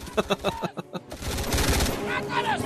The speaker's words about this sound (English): gunfire continues. Yeah, fairly accurate.